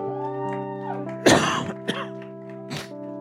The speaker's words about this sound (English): I haven't coughed all week. Got to cough as soon as I get in the pulpit.